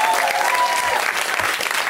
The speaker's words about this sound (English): We're gonna just send her claps. Woo!